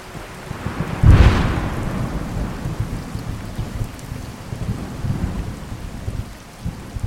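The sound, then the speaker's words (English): A heavy thunderstorm: one sharp, loud thunderclap near the start rolls off into a deep rumble, while dense, steady rain hisses and patters throughout. “Rain is coming down in torrents. Thunder booms overhead and the wind whips around you.”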